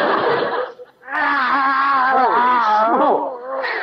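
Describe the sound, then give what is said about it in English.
Loud, drawn-out yowls of Skid Row tomcats in Los Angeles, with wavering, sliding pitch, a short break after the first cry, then a long continuous caterwaul bending up and down before trailing off. “Another cat following me.”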